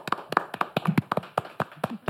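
Brief, sparse applause from a small group at the Dial Bookshop, during a live talk about the book The City is Killing Me on Lumpin' Radio. About a dozen sharp, irregular claps over about two seconds, moderately loud, with no voices.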